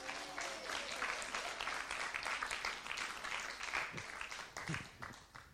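A crowd bursts into sustained applause, dense overlapping claps at a steady loudness for several seconds, with a few voices faintly audible underneath.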